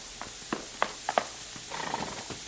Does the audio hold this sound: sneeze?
no